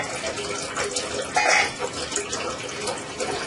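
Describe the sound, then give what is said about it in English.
Water runs steadily from a tap fitted with a drinking-water filter in a continuous hissing stream, fairly loud, with a brief louder splash partway through and no one speaking. “You install it on your tap and you have filter water to drink.”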